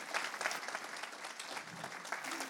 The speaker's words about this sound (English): So why don't we give him a Port of Ireland round of applause? Can we do that as he comes?